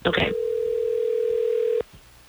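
A single steady telephone ringback tone as hosts of the radio station Hot 101.5 in Tampa Bay phone a listener on air: a flat electronic hum lasting about a second and a half after a short noisy burst, then cutting off abruptly into near silence.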